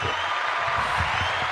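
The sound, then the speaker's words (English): Steady, dense applause fills the whole moment, a continuous wash of clapping with no pauses, fairly loud, and a faint low murmur underneath. “Let's get some applause going on this thing real quick.”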